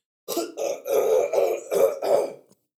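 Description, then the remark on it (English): A fairly loud run of rough, strained throat clearing, about five harsh rasping bursts in quick succession, as a person with a sore throat tries and fails to cough something up, with no speech. “My throat hurts so much that I tried to cough that up and I couldn't.”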